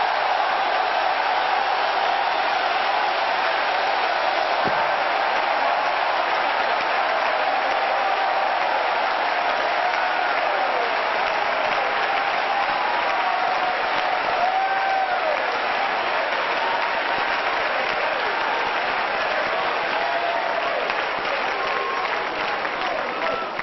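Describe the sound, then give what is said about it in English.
An audience claps steadily and loudly and shouts in triumph to the Lord, with shouts and cheering voices mixed into the dense, continuous applause that holds at an even level throughout. “Would you clap again and shout with your voice of triumph unto the Lord?”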